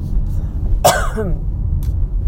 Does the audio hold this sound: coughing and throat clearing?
yes